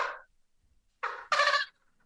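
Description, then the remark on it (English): A person's voice imitates a turkey gobble with the mouth in short, warbling bursts: a brief call, a pause, then two louder rattling gobbles close together, fairly loud, with no other talking. “So let's hear your gobble.”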